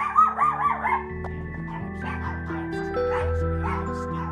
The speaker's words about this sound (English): Now, we have some dogs. That they won't bite you, but they might lick you to death.